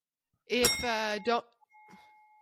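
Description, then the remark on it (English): A short burst of vocal sound, then a single soft bell ring that hangs as a thin, steady tone and fades quietly on its own. “one bell ring and we're done.”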